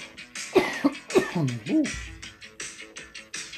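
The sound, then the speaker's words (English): A few harsh coughs in quick succession, loud and raspy with some throaty, voiced rasps mixed in, followed by quieter rhythmic noise. “Always when I cough, it's gonna be a good show.”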